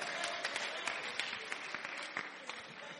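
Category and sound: crowd, audience applause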